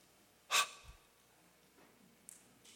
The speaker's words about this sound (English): It's awe. It's wonder. And it was that audible gasp that he modeled in the video.